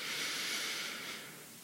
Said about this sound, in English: Now, as we again continue to just deep belly breathing, what we're going to do is we are going to, when we breathe in, we're going to know that we're breathing in. We're just going to really focus on breathing in.